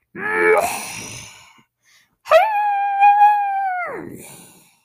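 Wolves cry out as arrows strike them: a wavering, whimpering yelp that fades, then after a short pause a long, steady howl that slides down in pitch at the end.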